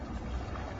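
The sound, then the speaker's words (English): A single quick, stifled sneeze bursts out at the very end, short and sharp, after a stretch of quiet low background rumble with no talking. “Bless you.”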